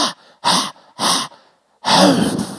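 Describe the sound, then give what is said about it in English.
A voice imitates rhythmic labor breathing while coaching through a contraction: three short, sharp breathy puffs in quick succession, then a longer, drawn-out exhale, fairly loud. “And it's like time to do the breathing. I go, breathe with me.”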